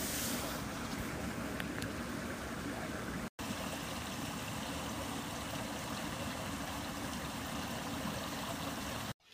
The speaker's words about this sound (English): I actually decided to record this audio brookside because the brook, the babbling brook sounds were much more pronounced than the creek sounds, which were just a trickle.